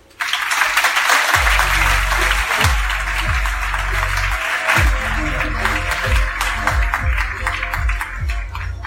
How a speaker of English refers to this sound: Let's give a huge round of applause to our speaker, Kevin Folta.